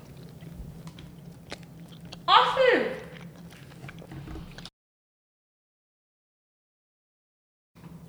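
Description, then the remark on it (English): Someone bites and chews a cookie right up against the microphone: a loud, crisp crunch lasting about a second, then softer chewing before the sound cuts to silence. “It honestly kind of bugs me that you're chewing it right next to the mic.”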